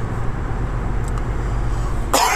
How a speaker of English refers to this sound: Excuse me, I still have a little bit of a cough. I leave the coughing in. I don't edit anything out.